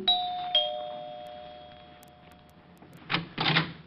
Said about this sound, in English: Around about 8 o'clock, after I'd taken care of dividing the reward, I steered for 975 Park Avenue, made it with no trouble, and rang the bell to Helen's apartment.